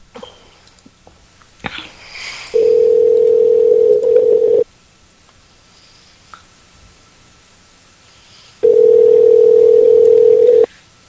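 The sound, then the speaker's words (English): An outgoing phone call ringing: two long, steady electronic ring tones, each about two seconds, separated by a few seconds of quiet line hiss, loud as if through the handset. “Okay, well, it's ringing right now.”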